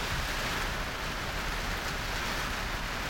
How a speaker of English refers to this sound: But just like the rain that's happening right now, and I don't even know if this is going to be usable because of how loud this rain is, just let it wash away.